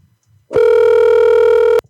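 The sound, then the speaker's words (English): A single loud, steady electronic phone ringback tone holds for just over a second and then cuts off abruptly, with no voices present, as a call is placed to return a missed call. “Call him back.”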